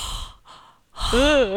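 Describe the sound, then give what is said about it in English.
Heavy breathing right against a microphone: two airy breaths, a brief pause, then a louder exhale that slides into a wavering, voiced sigh. “I can breathe heavily into the microphone.”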